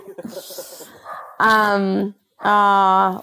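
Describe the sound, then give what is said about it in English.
A puppy lets out two loud, drawn-out, yelping barks, with a short pause between them, following a moment of soft, indistinct sound. “Your puppy. And on that note, I think your puppy is ready for you to go have a Saturday.”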